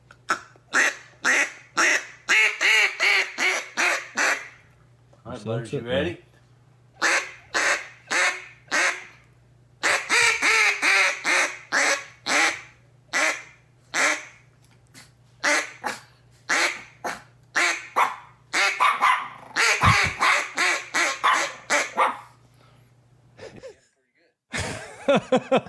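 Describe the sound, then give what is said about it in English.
Rapid series of loud, nasal duck-call quacks come in bursts as someone teaches Butters the dog to blow a duck call, trading off with the dog's sharp barks, and a brief spoken line near the start. “Hey, all right, I'm teaching Butters how to blow a duck call.”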